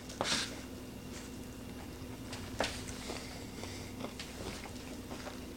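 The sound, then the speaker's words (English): Crunching as someone bites into a crisp ice cream cone holding soft ice cream with M&M's: two sharp bites, then softer intermittent chewing crunches against a quiet background with no talking. “So that adds a bit of additional crunch.”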